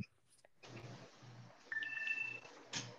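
An iPhone's short electronic ding-ding low-battery alert, with the battery at about 7%, chimes twice in quick succession, soft, over a steady background hiss with no one talking.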